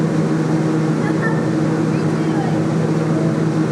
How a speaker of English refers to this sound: And I think right now, hopefully, let's listen. Maybe they're ready. Can you guys listen and see if the... I hear the microwave.